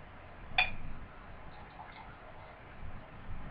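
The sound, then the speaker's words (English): Black beer with ruby highlights pours into a glass after the top is popped off: a sharp glassy clink at the start, then a steady, soft rush of liquid that keeps going quietly to the end, with no talking. “Just popping the top off this pour here. This pour. Sorry, Pickleless. You scared Pickles. You scared Pickles. All right, then we go for the pour.”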